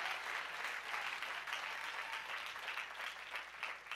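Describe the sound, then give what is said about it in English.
An audience claps steadily during a sermon, a dense, sustained patter of many hands at an even, fairly loud level with no voices standing out. “Go ahead and clap.”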